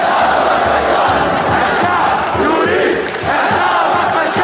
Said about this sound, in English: They're chanting, "The people want you to hang Bashar." This was in Idlib in the northwest near the Turkish border, and they were referring to President Bashar al-Assad.